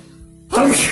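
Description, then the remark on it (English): A single sudden, loud sneeze bursts out after a brief quiet moment, with a sharp breathy blast that lingers briefly before fading. “Got to sneeze.”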